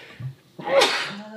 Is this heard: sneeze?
yes